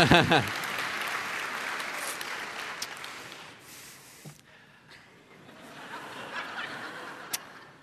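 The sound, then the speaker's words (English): A church audience applauds as the speaker comes to the pulpit, in a dense, steady wash of clapping that dips briefly partway through, then swells again, with a few scattered chuckles mixed in. “I just want to say, no one's ever applauded when I come to the pulpit, you know.”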